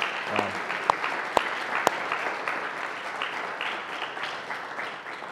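An audience applauds steadily throughout, a dense wash of many hands clapping, with a few sharp louder claps standing out early on before the sound gradually thins toward the end.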